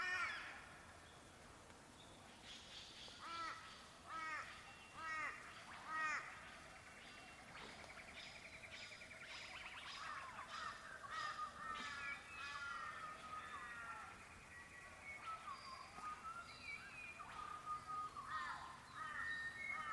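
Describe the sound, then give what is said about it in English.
Birds call repeatedly in an outdoor setting, with harsh, crow-like caws and chirps overlapping in irregular bursts over a soft ambient background, moderately loud. “Then return to the sounds of the bird song.”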